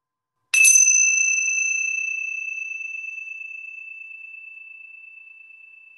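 A single bright bell strike rings out clearly, its clean metallic tone sustaining and slowly fading away over several seconds in otherwise silence, struck for a listening exercise.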